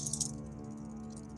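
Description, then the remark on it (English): Dice rattle and clatter as they're rolled for a medicine check in a tabletop game, with a quick burst of sharp clicks at the start that settles into a softer, steady rattle. No one speaks. “So roll the dice and add your intelligence to it.”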